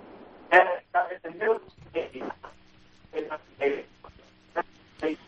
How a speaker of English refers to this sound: Whoops, we're losing you there. We might have lost him, cousin. Yeah, we might have lost you,